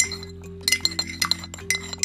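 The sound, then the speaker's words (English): A series of light, bright porcelain clinks, a teacup tapping against its saucer several times in an irregular rhythm as tea is sipped, over a steady low hum with no one speaking. “Hold on, let me sip my, you know, my tea.”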